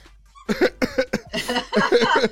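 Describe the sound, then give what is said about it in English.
A burst of hard, rapid, loud coughing, several forceful coughs running together with a harsh, breathy rasp, with a laughing quality mixed in. “I'm gonna piss myself if I cough this hard.”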